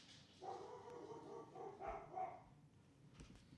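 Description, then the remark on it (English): Dogs bark and yowl at the door in a couple of drawn-out, tonal bursts, fairly muffled, with a short pause between them and no one talking, as a man goes door to door selling shrimp or meat. “So I'm not even going to take that out because those are our crazy dogs.”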